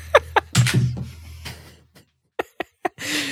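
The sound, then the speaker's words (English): A few sharp clicks and knocks, then a rustling clatter, followed after a pause by three quick latch-like clicks and a soft whoosh, as a door is opened for an Amazon package delivery. “Hold on, I got a freaking Amazon package. I have to open the door.”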